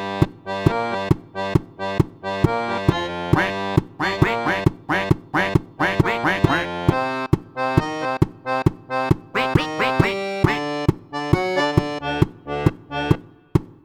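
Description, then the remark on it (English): A duck quacks in a quick, steady rhythm, the honking calls set like beats within a bouncy tango tune with accordion, loud throughout. “There are some vocalizations in there, so I just threw a duck in there.”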